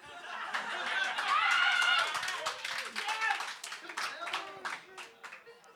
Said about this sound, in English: Applause break.